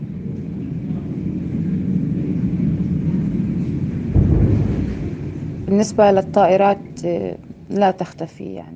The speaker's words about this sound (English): All the while, the bombs continue.